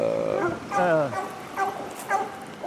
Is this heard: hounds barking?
yes